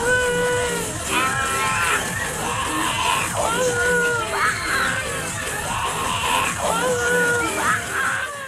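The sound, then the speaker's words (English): A crowd of people screams and whoops together, like riders on a roller coaster, with overlapping rising and falling shrieks that swell in waves. The sound is loud and continuous. “We are travelling a little bit behind schedule today, ladies and gentlemen, so please put on your seatbelts and scream if you want to go faster.”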